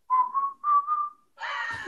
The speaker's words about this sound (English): I didn't realize that's what that was. I just heard some whistling. I was like, I can't whistle that good either